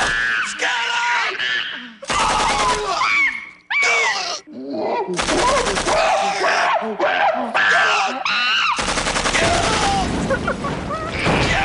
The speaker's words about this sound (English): So hey, roll that back. That's like automatic machine gun.